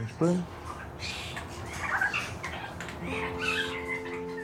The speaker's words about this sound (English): I go in with a microphone and follow birds around the aviary as they practice their song.